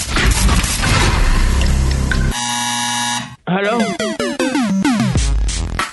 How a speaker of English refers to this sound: Oh, man, the buzzer went off